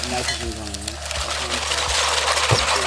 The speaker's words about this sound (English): Okay, so what he's doing, he's poured the liquid nitrogen into the cocktail shaker with the green leaves, and he's muddling it, you know, with a standard cocktail muddler. So now I'm crushing up the herbs.